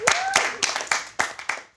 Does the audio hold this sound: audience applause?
yes